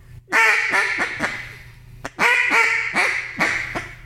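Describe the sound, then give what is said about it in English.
A duck call blown to imitate hen mallard quacks: two loud runs of four or five raspy, nasal quacks each, the notes dropping off and ending abruptly without being finished, with no talking. “Yeah, so I'll try as far as on a fine hen, but a fine hen on a lazy hen would be.”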